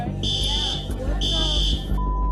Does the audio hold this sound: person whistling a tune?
no